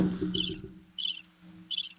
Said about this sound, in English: Do you have a cricket sound in it?